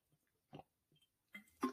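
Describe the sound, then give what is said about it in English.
Quiet mouth sounds of a person sipping and swallowing water into a microphone: two faint wet clicks separated by near silence, then a louder gulping swallow right at the end. No one speaks. “I wonder if y'all can hear me swallowing, child.”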